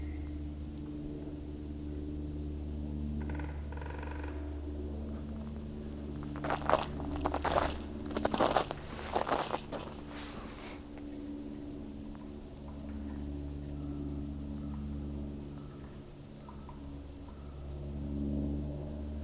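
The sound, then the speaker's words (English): A couple of hairy woodpeckers drum on a trunk on a sunny day in early March, in a few quick, loud rattling rolls over several seconds, set against a steady low rumble that continues throughout. “So it seems like a couple of them are hairy woodpeckers.”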